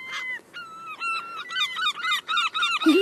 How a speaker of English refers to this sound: Yeah, so even, like, that's why there's loads of seagulls. There's a lady feeding seagulls up here. Seagulls! Oh, I don't want to disturb them.